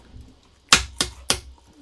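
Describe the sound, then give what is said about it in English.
A pen slapped down on a table three times in quick, even succession, each a sharp, bright smack standing alone against a quiet background with no talking. “He's just slapping a pen on the table.”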